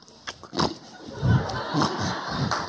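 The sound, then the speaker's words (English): A person imitates a pig, making a quick series of snorting, nasal oinks and grunts, roughly evenly spaced, with no other talking. “they are covered completely with the mud, chances are that you may not be able to tell the difference, which one is the pig or which one is the goat.”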